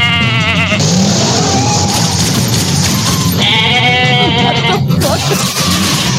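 A goat bleats loudly twice, each cry long and quavering, with a short gap between them and a steady wash of background noise throughout.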